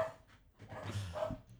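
animal, small dog barking

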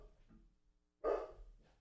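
animal, dog barking

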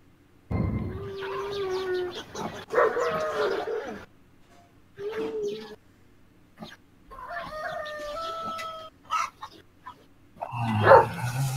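animal, dogs barking

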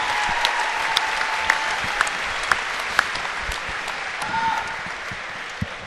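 crowd, crowd applause

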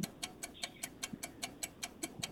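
sound effect, ticking clock countdown timer

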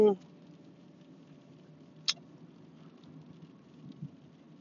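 nature, rain falling

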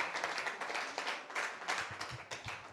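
crowd, audience round of applause

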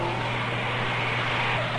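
vehicle, car engine

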